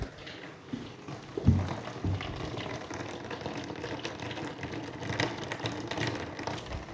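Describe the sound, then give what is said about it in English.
Heavy rain pours down in a steady, dense hiss, full of crackling patter and splashes, with a brief low thump early on and no voices. “It's raining heavily. I'll see if I can capture some of the sound.”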